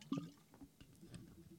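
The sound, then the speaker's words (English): A quiet gulp and wet swallowing sounds from someone drinking water, with small liquid squishes and a brief slurp near the start. “I need to take a drink of water.”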